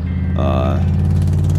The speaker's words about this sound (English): As you guys are all just hanging out, enjoying the evening or working in your yard, and also enjoying that to a degree, you hear a car start coming down the street with its kind of distinctive squeaking to it of maybe a loose fan belt or something.